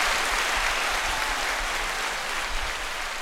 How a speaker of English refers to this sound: The round of applause now loops.